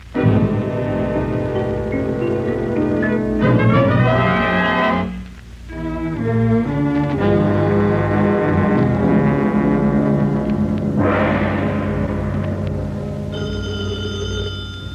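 A bell tolls with deep, resonant strokes and rich shimmering overtones, layered over loud, sustained dramatic music that briefly dips midway before a bright, higher ringing tone enters near the end.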